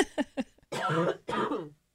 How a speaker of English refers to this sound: I get a cough here. Hold on.